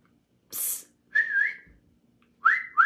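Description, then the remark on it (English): A sharp hiss is followed by a series of short whistles, swooping up and holding, like a man's catcall wolf whistle at a woman, repeated with brief pauses between bursts. “Don't flatter yourself, ma'am, because he whistling at you.”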